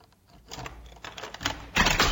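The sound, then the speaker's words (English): A door sound effect in the interactive murder mystery game Sherlock Holmes, The Great Game, played on Alexa: a few short clattering bursts of rattling noise, building to a louder, longer scrape at the end, with no voices. “It's a door.”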